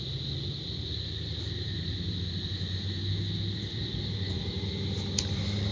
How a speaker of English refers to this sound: Sorry, we're distracted by cars driving by us. There was a dark truck. There were trucks.